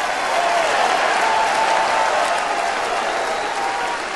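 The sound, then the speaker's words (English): A crowd applauds steadily and loudly, a dense wash of clapping hands that holds for several seconds without letting up, with faint voices mixed into the noise. “He had the crowd eaten out of his hand.”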